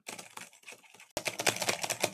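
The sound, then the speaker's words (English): Rapid computer keyboard clicking as someone goes onto a website, a stream of crisp keystrokes that starts fairly soft, then abruptly grows louder and denser for the second half, with no voices. “Is that you clicking? And I went onto the website. That's the sound effect, right?”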